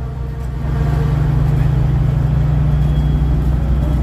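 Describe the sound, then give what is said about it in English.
A loud, steady low engine drone of trucks and generators running outdoors at a convoy protest near Parliament in Ottawa, holding a constant deep hum throughout with a faint wash of background noise and no speech. “Oh, you got trucks. Generators.”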